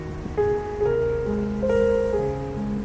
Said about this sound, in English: To gauge the mood of locals ahead of the elections on Thursday, I went to Putney High Street and braved the rain.